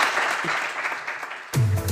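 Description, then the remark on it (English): A crowd applauds Liam Griffin with steady, dense clapping that fills the space, followed near the end by a sudden shift to a louder, lower-pitched burst of sound. “So big round of applause for Liam Griffin, ladies and gentlemen.”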